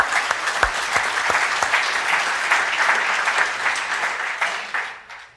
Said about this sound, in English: We have our high schoolers with us today, and we're so blessed to have. Let's give them a hand. I want to clap for the high schoolers being here today.